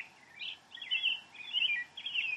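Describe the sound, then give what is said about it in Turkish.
Birds chirp in a steady series of bright, warbling calls, about four short phrases in quick succession, moderately quiet, with no voices present, on a grassy hill by a large plum tree beginning to blossom. “Kuş sesleri, belki uzaktan bir su sesi, çimen kokuları hepsi sizi içine alıyor.”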